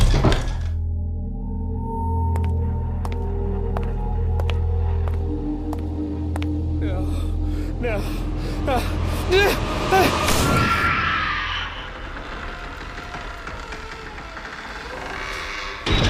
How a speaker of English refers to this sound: All right, let's do the squeaky door and go.